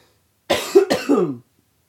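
A forced cough of about a second, breaking into two or three throaty, voiced bursts that trail off, with silence before and after.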